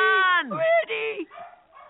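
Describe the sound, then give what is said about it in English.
Dogs yip and whine in a quick, loud burst, their high cries sliding down in pitch before a few shorter, softer yelps trail off. “Okay, there go the dogs.”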